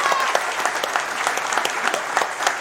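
A crowd claps steadily for a seven-year-old boy, a dense, continuous patter of many hands with no voices standing out, holding at an even, moderately loud level throughout.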